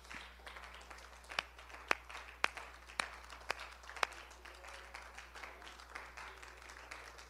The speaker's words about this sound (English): Somebody clap your hands unto the Lord right now.